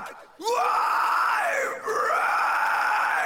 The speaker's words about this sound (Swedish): Och det är mycket dist på de här skriksång-grejerna. Hur mycket kan han lägga i sträck innan rösten är paj? Men han är bra på det där.